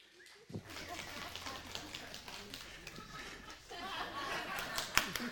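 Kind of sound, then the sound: crowd, applause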